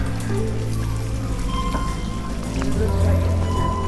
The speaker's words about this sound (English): Look at these water fountains. They're plexiglass cylinders with the water running straight up in bubbles and then running off the top.